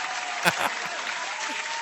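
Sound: audience applause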